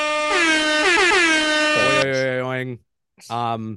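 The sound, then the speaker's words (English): Loud, blaring air horn blasts fire in quick succession, overlapping at different pitches, then a brief pause before one final short blast. No talking over them. “throw the air horns in here because we're declaring officially, if it hasn't been definitively said yet, the Canucks are good.”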